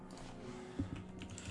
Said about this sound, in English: Dice roll.